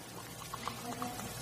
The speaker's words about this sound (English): Here's some Alka-Seltzer. Here's a package, right? I'm going to pour some water in.